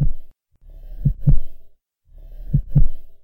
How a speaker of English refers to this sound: It sounds like a big, pumping heart. Like as if the house was alive.